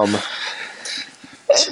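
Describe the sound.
A short voiced catch gives way to a loud, breathy burst of hiss that tails off, followed by a sharp voiced sound at the end: a sneeze from allergies during a sports radio broadcast.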